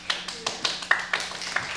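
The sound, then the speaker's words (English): Thin, scattered applause welcoming a fitness guest in a comedy sketch: a handful of irregular claps spaced apart over a couple of seconds, fairly quiet and sparse, with no voices. “Heartfelt applause there.”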